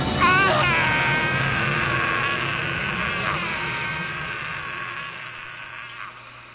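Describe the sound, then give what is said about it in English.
A long, sustained scream of agony from a man, the voice of the Jedi Exar Kun falling into the darkness, high-pitched and wavering, held almost without a break for several seconds before slowly fading. No speech. “That scream. What is it? It sounds like a man being eaten alive.”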